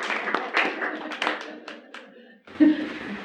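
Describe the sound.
An audience at a talk on the book Coming Into Balance claps to welcome its author, a quick, uneven patter of many hands, with voices mixed in. The applause fades, then an abrupt cut brings in a louder burst of clapping and chatter.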